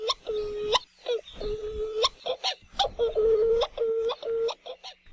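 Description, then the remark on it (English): A Hawaiian petrel ('ua'u) seabird gives a series of drawn-out, moaning calls, each a sustained tone that rises and drops at the ends, repeating several times with no other sounds. “Their haunting calls can be heard at night as they fly mauka to their nests high in the mountains.”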